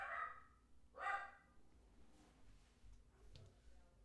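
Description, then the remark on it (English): A dog barks twice in quick succession, sharp woofs about a second apart, followed by a few seconds of quiet rumble and faint shuffling. “Come, put the dog in his cage, bro.”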